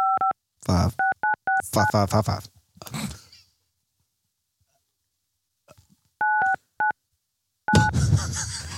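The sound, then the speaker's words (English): Several touch-tone phone keypad beeps in quick bursts as an area code and phone number are entered for an automated survey line, each a short dual-pitched tone, separated by pauses and mixed with breathy vocal noises like sighs and gasps, fairly loud. “Please enter the area code and phone number you'd like us to text the survey link to.”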